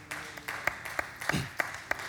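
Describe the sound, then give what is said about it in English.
A few people in a church audience clap sparsely in a steady rhythm, about five distinct claps against a low murmur, sounding thin rather than like full applause. “It's awkward if only one or two clap.”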